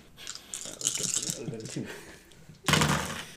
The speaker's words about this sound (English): You know, my favorite thing about this tactile dice rolling is the 6 months or whatever that we've had